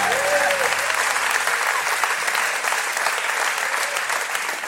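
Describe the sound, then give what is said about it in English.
A large group claps enthusiastically as a hand clap of praise to God during a morning service, sustained, dense applause, steady and fairly loud throughout, with a brief tonal hum fading out at the start. “Would you give God just a hand clap of praise this morning?”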